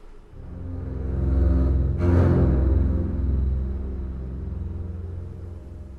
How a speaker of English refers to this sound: And as you heard, it's set over a thundering drone in three-part basses.